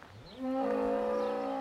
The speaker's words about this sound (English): Cows block the path. One big black matriarch has a growly contralto, not at all happy to share her space.